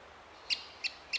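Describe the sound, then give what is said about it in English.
A song thrush sings the same short, bright note three times in quick succession, each call crisp and clear against a quiet background. “So repetition is a really good way of understanding whether you're listening to a thrush or not.”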